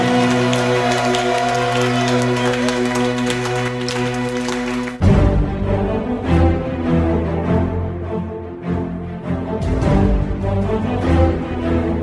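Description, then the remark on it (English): An audience claps for the Lord after a prayer, a dense, continuous patter over a sustained musical backdrop, which shifts partway through into livelier music with rhythmic clapping carrying on beneath it. “Give the Lord a clap and bless the name of the Lord.”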